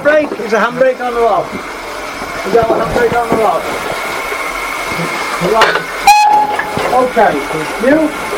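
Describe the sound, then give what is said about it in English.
A steam locomotive running in the Severn Valley, heard from the footplate, with steady mechanical rumble, a short whistle blast midway, and people talking over the noise. “A taste of the Severn Valley on the footplate”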